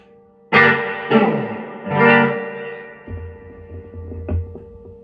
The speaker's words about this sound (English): Right up to six on the reverb. It's pretty wet.